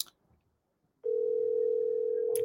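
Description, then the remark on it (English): After about a second of near silence, a steady electronic phone ringing tone begins and holds loud and unbroken, a call to the speaker's brother playing over a speakerphone, with a short click near the end. “You better pick up this phone.”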